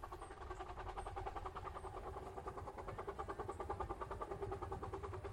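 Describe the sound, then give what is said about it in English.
A steam train at Tilden Park rumbles steadily along the rails, its engine chugging in a continuous rhythmic churn with a low, heavy rumble throughout, with no voices. “You can hear the sounds of the train traveling across the rails.”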